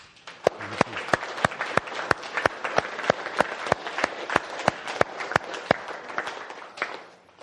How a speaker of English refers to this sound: If we can make that resolution, please stand up, take a deep breath, and start clapping.